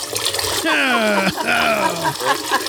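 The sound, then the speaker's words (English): A urine-stream sound effect: a steady liquid stream splashes and trickles continuously, like urine hitting water, fairly loud, while voices exclaim and talk over it throughout. “Christmas is saved when he finds out that the judge in this case is his old high school sweetheart, Eileen Cannon, who dismisses all charges and sends him home to celebrate Christmas with a golden shower.”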